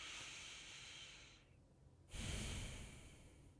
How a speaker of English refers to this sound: The breathing is done through the nose, in and out.